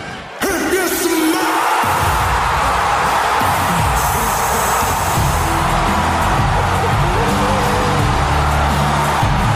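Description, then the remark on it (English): A huge arena crowd pops for Pat McAfee showing up in the ring, roaring and cheering continuously at full volume, a dense wall of whoops, yells and bellowing voices that erupts suddenly and holds steady; the cheer lasted four and a half minutes. “Later that night, he showed up and listened to this crowd pop.”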